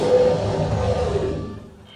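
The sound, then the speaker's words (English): A loud, angry bear roar sound effect, the 'angry Rainbow Lounge Bear' played to signal that a speaker's time on stage is up: one sustained, rough growling bellow that stays powerful for about a second before trailing off and fading out. No talking over it. “That means wrap it up then, or else you're going to bring out the angry Rainbow Lounge Bear.”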